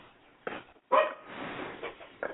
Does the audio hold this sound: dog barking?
yes